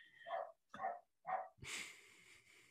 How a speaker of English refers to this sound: This fucking dog. Gonna like rip his larynx out.